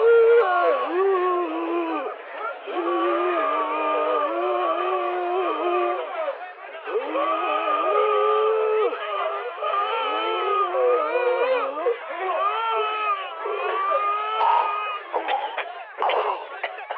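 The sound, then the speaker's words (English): The Nsburg Primal Scream Therapy Men's Choir sings a rendition of O Fortuna at the Nsburg Arts Parade with hoarse, strained voices, holding ragged sustained notes together for the full stretch. The sound is thin, steady and fairly loud, with raspy breaks near the end. “March Marchness has weighed heavily on the vocal cords of the Nsburg Primal Scream Therapy Men's Choir.”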